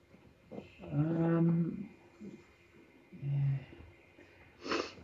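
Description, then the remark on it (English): A voice puts on exaggerated, raspy hacking coughs: two drawn-out, wheezy groaning coughs followed by a short, sharp burst near the end, fairly loud with quiet gaps between. “I've got this really bad cough.”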